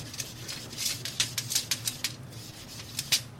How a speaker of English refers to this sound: Yeah, and the hum that you hear in the background, that's our extraction, that's the motor for it, and this is the soundtrack to our lives. It is, yeah. We can just hear like vroom.